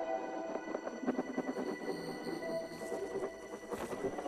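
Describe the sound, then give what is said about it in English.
A designed soundscape built to evoke saltiness or sodium, played while people taste Propel: a steady textured electronic bed with slight distortion, scattered small percussive clicks in a loose shaker-like rhythm, and occasional bright tonal pings, no voices. “This is our salty soundscape.”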